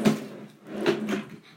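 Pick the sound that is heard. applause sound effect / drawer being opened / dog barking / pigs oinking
drawer being opened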